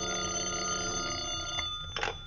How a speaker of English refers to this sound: Until about 1 o'clock in the morning when the telephone started having hysterics on my night table.